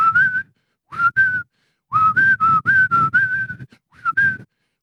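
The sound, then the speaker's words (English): Someone whistles a short, catchy chant-like tune in clear, rhythmic bursts of notes, with brief pauses between phrases; the whistling is fairly loud, with no talking. “You've at least got to have an appealing chant that somebody can whistle on their way home, you know?”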